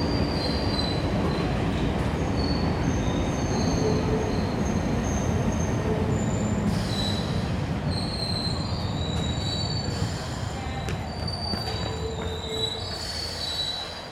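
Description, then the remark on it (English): An underground subway train on the yellow line arrives with a loud, continuous low rumble, high metallic wheel squeals rising and fading over it, growing slightly quieter toward the end as it slows. “Then, with a loud rumble, the next train arrives.”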